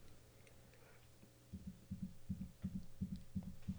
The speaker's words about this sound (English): That's your heartbeat.